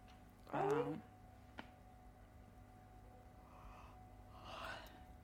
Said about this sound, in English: Yawning.